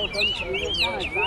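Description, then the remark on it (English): About nine hwamei songbirds, brought by their owner, sing in a continuous stream of bright, looping whistles and sweeping phrases, several birds overlapping, with a low murmur of background noise and indistinct voices underneath. “Wame is the songbird very well known in China.”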